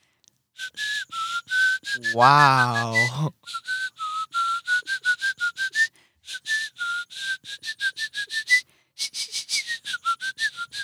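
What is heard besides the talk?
whistling through teeth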